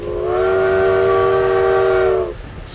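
A steam train whistle blows one long, steady, chord-like note for about two seconds, loud, then cuts off, leaving a low rumbling background.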